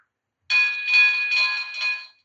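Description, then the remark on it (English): A driving app's school zone alert tone sounds alone: a bright, bell-like electronic chime with rich high overtones, held for about a second and a half while swelling in four quick pulses before fading. “So it gives you those alerts when you're on a voice call.”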